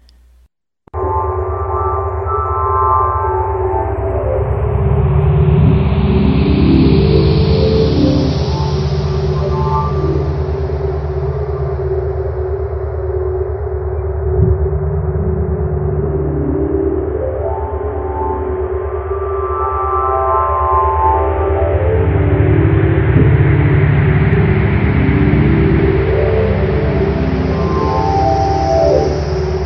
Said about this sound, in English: The ribbon-like arcs captured by the Hubble create a rising and falling melody that sounds similar to that of singing bowls, while the Chandra data is rendered to sound more like synthetic and windy purrs.